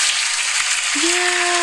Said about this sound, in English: If that don't deserve an applause, I don't know what do.